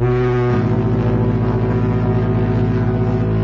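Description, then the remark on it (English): A ship's deep, droning horn blares loudly and steadily aboard a ship, its strong low tones shifting slightly in pitch about half a second in, then holding for several seconds with no voices. “We're on a boat. We are. A ship.”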